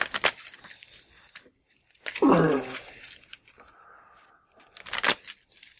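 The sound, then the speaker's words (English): Two quick bursts of playing cards being shuffled, crisp rapid riffling, one at the start and one near the end, with a short vocal sound and quiet hum in between. “I'm shuffling fast, guys.”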